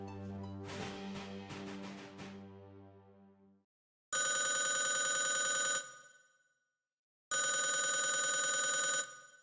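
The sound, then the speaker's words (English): A resonant tonal swell fades out, then a telephone rings twice for a call in 1980 from the Harrison family, each long, bright, steady ring lasting under two seconds with a silent pause between. No voices are heard. “A call came in 1980 from the Harrison family with a request to view the sword as they were visiting the area.”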